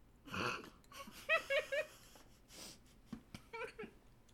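A slurp of a drink followed by strained choking: three high, squeaky wheezing gasps, then a string of short, sputtering coughs and breathy bursts, moderately loud.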